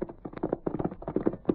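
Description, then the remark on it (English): Hooves of Silver, the Lone Ranger's great white horse, clip-clop in a quick, steady rhythm of hollow knocks, moderately loud, with no voices over them, as he rides to meet Tonto. “then hurried toward a grove of trees where a great white horse was standing. The Lone Ranger, quickly removing the disguise from his face, mounted Silver and rode to meet his faithful Indian friend, Tonto.”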